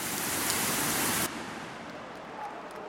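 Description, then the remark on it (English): Heavy showery rain pours at a football match between United and Liverpool in a dense, steady hiss, then abruptly drops to a softer, quieter patter about halfway through. No voices are heard. “The match kicked off in heavy, showery rain, which subsided after about 15 minutes.”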